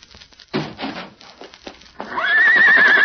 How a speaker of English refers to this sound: It's Tonto's horse.